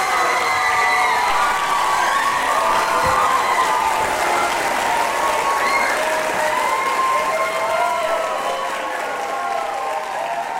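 A crowd applauds steadily while many voices scream and cheer in high, overlapping shrieks as the Division II One-Act Play champion for TAPPS 2023-24, which presented Mockingbird, Prince of Peace, is announced; the noise stays loud and dense for the whole stretch with no clear pauses.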